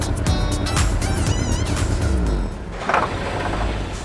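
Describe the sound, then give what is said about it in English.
A rainbow race car's engine revs loudly, its pitch climbing and wavering for a couple of seconds before dropping off into a rumbling idle with a brief burst near the end. “A rainbow race car. Vroom, vroom.”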